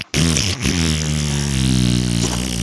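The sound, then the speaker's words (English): A loud, sustained fart noise: a low, buzzy, rasping tone with a brief stutter at the start, then a steady rumble lasting over two seconds, with no talking. “Really, any way you can shoehorn a fart noise into a story,”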